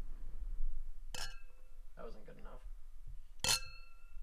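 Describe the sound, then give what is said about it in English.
Two bright clinks of cognac glasses in a toast ring out about two seconds apart, each with a short shimmering tail, with some low murmured voices in between. “I'm going to move the mic so we can... Cheers.”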